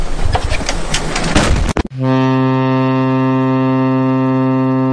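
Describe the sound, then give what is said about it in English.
A rough, rushing noise cuts off and a deep, loud boat horn blares in, holding one steady, buzzing low note without a break until the end; it is Rusty Rivers' custom boat alert for a livestream super chat. “A boat's headed this way.”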